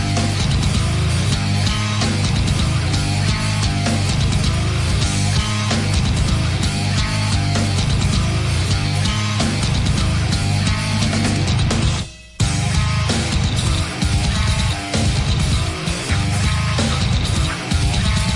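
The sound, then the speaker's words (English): Loud, dense heavy metal plays continuously with a harsh screamed vocal over distorted guitars and pounding drums, broken by one brief drop-out partway through. “Wish I could find the part where he's screaming.”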